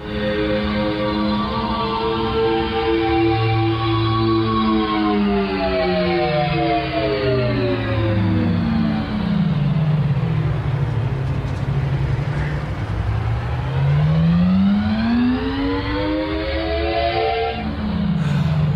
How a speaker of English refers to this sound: There's a French software company that's developing what's called an acoustic vehicle alerting system. That sounds fun, right? So these are some of the sounds they came up with to make you hear an electric car.